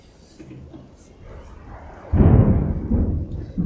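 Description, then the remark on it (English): After a quiet opening, a loud, deep roll of thunder rumbles in and lingers for over a second, with a soft steady hiss like falling rain underneath. “As we're kind of hearing now, I don't know if the recording can hear that, but there's thunder and there's rain falling”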